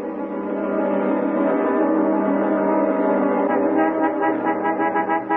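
car horn honking

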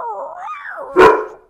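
dog barking

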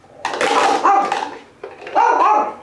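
small dog barking

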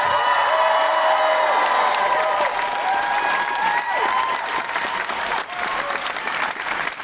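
theatre audience applause

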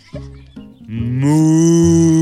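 cow mooing

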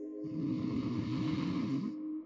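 loud snoring

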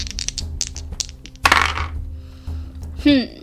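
dice being rolled

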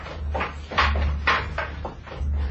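door opening

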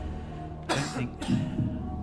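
cough

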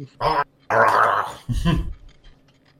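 wolf growling

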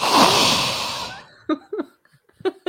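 breathing into the microphone

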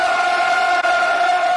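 stadium crowd roaring

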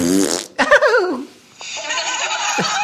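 fart sound effect

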